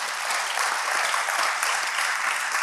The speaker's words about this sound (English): Can somebody clap your hands to the Lord today?